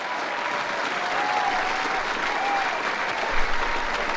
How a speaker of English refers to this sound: Welcome back. Welcome back. Hold the applause.